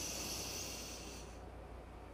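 A single long, deep breath drawn in during a guided breathing exercise, a soft airy hiss lasting about two seconds, brighter at first and then thinning out. No one speaks.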